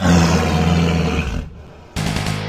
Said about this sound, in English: When he reached the center of the burning town, he heard a terrible growl. The growl of the werewolves.